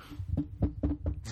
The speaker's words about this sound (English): knock on wood.